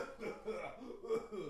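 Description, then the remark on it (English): A few short, throaty coughs in quick succession, moderately loud, with a voiced, almost chuckling quality between them. “Sounds like you got a little bit of a cough.”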